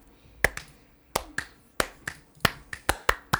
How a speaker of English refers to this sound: You can't see me, but I'm clapping. At one point, we were synced up, so just figure that out.